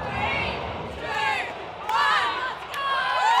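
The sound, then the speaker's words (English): A pub crowd at The Local in Fremantle, Australia, cheers loudly and steadily while watching the Matildas play England's Lionesses in a semi-final, many overlapping voices shouting and whooping, with excited yells surging higher about halfway through and again near the end as Sam Kerr strikes the ball into the goal. “The crowd goes wild as Australia's top scorer, Sam Kerr, charges, striking the ball into the goal.”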